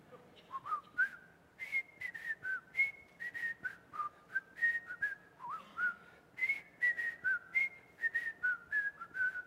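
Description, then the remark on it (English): Someone whistles a bouncy, familiar TV theme melody, clear rising and falling notes in a steady rhythm for several seconds, with no talking or other sounds. “And so let me illustrate this in the same way as, you know, if I started to whistle something like this.”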